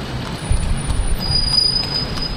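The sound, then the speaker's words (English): Traffic on a main street of Dakar, Senegal, with horses pulling wooden carts alongside cars, the air thick with sand: a steady rumble of engines with a thin, high-pitched squeal running over it, and faint knocks scattered through the noise. No one speaks. “Horses pull wooden carts alongside cars on the main streets of Dakar, the capital of Senegal.”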